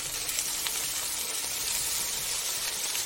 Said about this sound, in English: I'm getting tired of this frying thing over here.